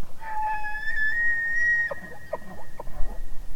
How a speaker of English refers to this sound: During the mating season, around late August, male and female herds come together. Bulls have a loud, high-pitched, whistle-like vocalization known as bugling, which advertises the male's fitness over great distances.